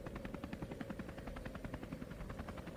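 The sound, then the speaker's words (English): A large white and blue helicopter hovers by a rooftop helipad, its rotor thumping in a fast, steady rhythm, loud, with a deep rumbling engine drone underneath. It holds steady throughout, and no one speaks. “The 9mm blast had done a temporary number on her hearing, which explained why she didn't know about the helicopter until she was almost to the roof.”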